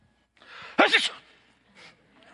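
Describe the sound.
A single loud sneeze, faked on purpose, preceded by a short breathy intake and followed by a brief quieter breath a moment later, with no talking.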